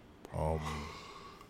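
A person yawns once, fairly loud: a breathy intake swelling into a drawn-out voiced groan that slides in pitch and trails off into quiet breath, with no talking.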